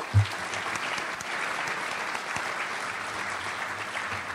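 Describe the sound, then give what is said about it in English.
An audience applauds steadily for several seconds, a dense, even wash of many hands clapping at moderate loudness with a brief low thump at the start, applauding former state representative Tim Butler, president of the Illinois Railroad Association. “Yeah, go ahead and give Tim a hand.”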